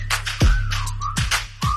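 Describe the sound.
A human whistle slides up and down in pitch, repeated over a heavy hip-hop beat with booming bass kicks and crisp hi-hats, no voices present.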